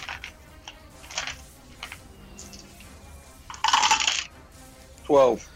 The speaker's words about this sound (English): All right, roll me damage for the one to hit. It's 2 6-sided dice plus six.